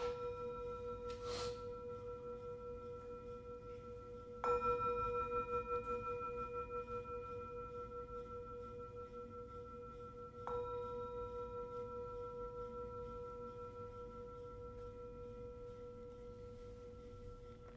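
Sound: meditation bell ringing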